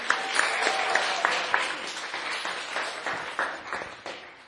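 A crowd applauds steadily for several seconds, many hands clapping in a dense, crackling patter that holds a fairly even level before tapering slightly at the end.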